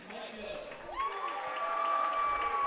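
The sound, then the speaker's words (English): A home crowd cheers and applauds steadily as the Muhlenberg starters are announced, with a drawn-out, booming announcer's voice rising and holding over the continuous roar of the crowd. “Muhlenberg being announced, much to the enjoyment of the home crowd here.”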